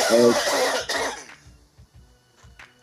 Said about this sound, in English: Dude, get a cough ball. Sorry.